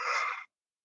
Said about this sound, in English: Interesting. Yes, it's the yawn reflex. And I bet that opens up the tear ducts, doesn't it? It does. It does.